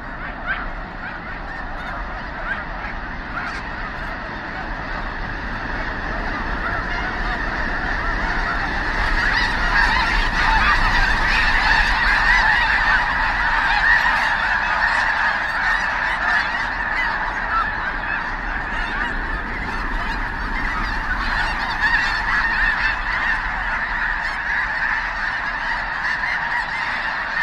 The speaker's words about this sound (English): We leave you this week with the sounds that snow geese make, lots of snow geese. Lang Elliott and Ted Mack met a huge flock on a recent migration in the Rainwater Basin region of Nebraska.